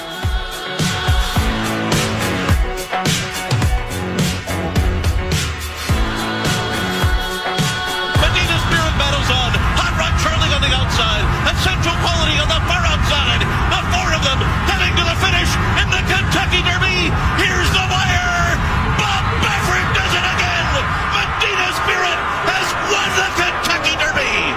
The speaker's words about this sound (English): Is that an actual crowd or is that fake crowd noise? That's crowd. Yeah, it was an actual crowd there.